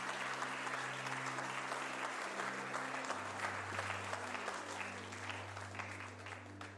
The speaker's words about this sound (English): Can we give our kids an amazing round of applause for helping out this morning?